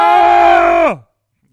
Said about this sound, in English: Today's secret word is Baron. Every time we say Baron, we scream.